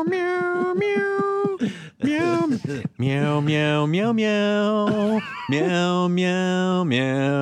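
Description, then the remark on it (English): A voice sings a melody as a string of drawn-out, cat-like meows, imitating a cat, with held pitches and stepwise changes. Loud and continuous for several seconds. “Meow, meow, meow. And then the cat, then you've got like a little kitten”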